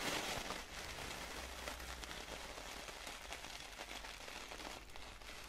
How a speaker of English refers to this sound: Listen to the ball. Listen to the crunchy sounds. Almost sounds a little bit like rain.